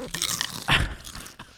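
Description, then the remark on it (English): Loud crunching of potato chips, a sharp bite in the middle followed by a few quieter crackly chews, with no talking. “Let me do the final crunch.”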